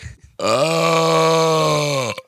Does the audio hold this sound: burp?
yes